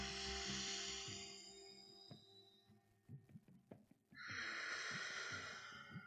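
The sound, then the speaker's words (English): Ujjayi breathing in yoga, deep breaths through the nose with lips closed: two long, ocean-like hissing breaths separated by a pause with a few soft knocks, over a steady low hum. “So I'm just going to do the sound. You can hear it. It's called Ujjayi breathing.”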